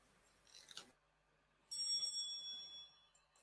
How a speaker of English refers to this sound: Oh, okay. We got a bell then. I didn't realise we got a bell with this. I'm excited.